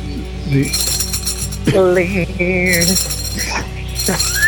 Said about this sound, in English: I hear the bells. It's my tambourine.